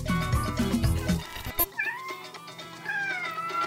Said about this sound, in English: That's my kitty cat, Max,